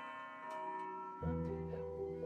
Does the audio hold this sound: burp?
no